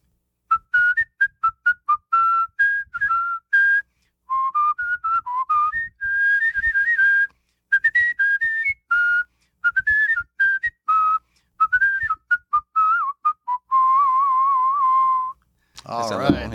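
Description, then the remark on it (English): A man whistles a bright, tuneful song melody, clear, with quick trills and short pauses between phrases, ending on a long held note before a brief burst of applause. “Would you whistle a song for us?”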